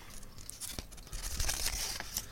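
Packaging is torn open in a series of sharp, ripping bursts with crinkly plastic rustles between them, the tearing growing louder and busier toward the end. No one speaks.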